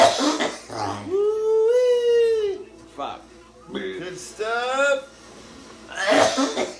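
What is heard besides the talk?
coughing fit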